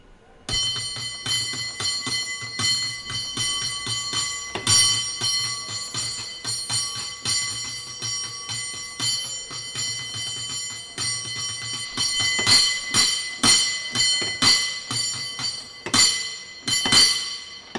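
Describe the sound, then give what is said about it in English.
The bell of San Francisco cable car number 21, rung by a cable car gripman, clangs in rapid, rhythmic patterns for about eighteen seconds, bright and metallic with a sustained ringing tone, building to faster flurries of strikes near the end. “displaying his cable car bell ringing skills for our Ask a Cable Car Gripman episode.”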